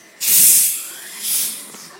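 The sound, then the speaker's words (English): A carbonated drink fizzes with a bright hiss that surges in loudly, eases off, then swells again briefly before fading, with no voices. “Listen to the fizz.”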